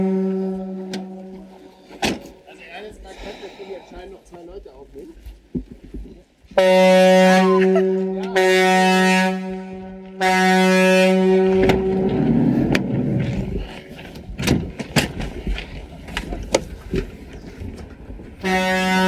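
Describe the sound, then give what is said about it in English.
A deep, droning horn like a ship's foghorn blares loudly and steadily for several seconds, after a quieter stretch of the same tone, then gives way to muffled voices and rustling. “It does sound like a ship, doesn't it?”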